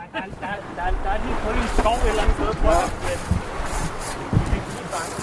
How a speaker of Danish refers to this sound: Det kom lidt bag på mig, at der faktisk var så meget vind. Eller også har reaktionen været, altså vi var længere ude, og vinden var hårdere end sidste gang, jeg var ude.